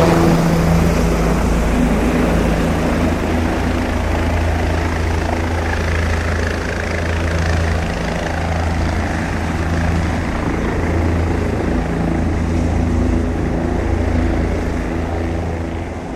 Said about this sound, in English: and a helicopter, I think, was going around my head. I immediately jerked these headphones off of my head and looked around to find out where the helicopter was coming from. It was the most immersive thing I've ever heard in my life.